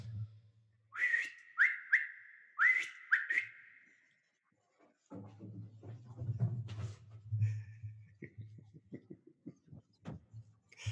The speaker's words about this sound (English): So, yes, a whistle and they come running.